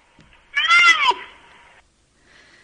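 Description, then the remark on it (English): A young bull rhino lets out a single high, wavering squeak, much like a kitten's mew, fairly loud, fading into a softer breathy tail before a brief faint sound at the end. “And then this is a younger bull.”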